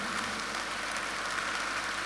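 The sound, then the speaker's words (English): An audience in a church claps steadily, a dense, even wash of many hands at moderate loudness with no voices over it, holding constant for the full couple of seconds. “It's a good place to clap your hands.”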